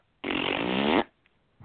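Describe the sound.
A single loud, wet fart noise, seemingly blown with the mouth as a raspberry, lasting under a second and then cutting off into quiet.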